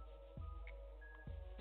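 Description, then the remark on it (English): A quiet phone-line connecting tone as a caller comes through on the GRINDHARD Radio phone lines: a short electronic blip, then a thin steady beep held for about half a second, with a couple of low soft thumps in the background. “We got another call on the line for you, Miss Chief.”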